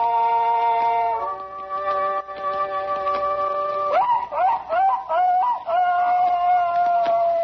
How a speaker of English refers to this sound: Just a hound that's baying in the night, you might say. Just a dog that's chasing a fox. But to my paw, that was the sweetest sound this side of heaven.